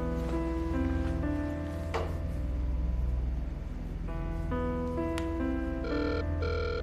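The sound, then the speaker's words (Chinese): A telephone rings with a steady, melodic electronic tone that changes pitch every second or so, clear, with no one speaking over it, as a call is placed to threaten someone over repaying money. “你而家打电话俾个仔仔，恐吓佢睇下冇钱还，有钱还我哋去做佢收工。”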